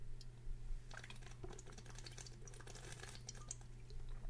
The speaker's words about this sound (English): Let's get started, alright, with a little bit of an update after I take a quick sip of my sippy water.